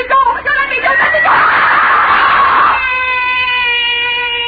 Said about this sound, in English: Why am I screaming? Just a dream. I'll stop screaming.